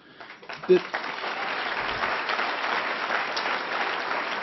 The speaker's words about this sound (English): Thank you. I hope the applause doesn't count toward my time.